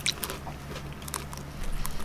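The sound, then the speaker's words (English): Crisp crunching as someone bites and chews a hard, crunchy wafer bar, with a few sharp cracks at the start and steady munching throughout, no talking. “Which gets lost when you crunch down the wafer.”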